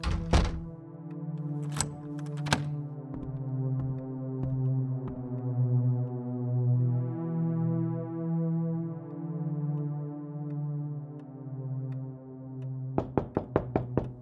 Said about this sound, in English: Knock, knock!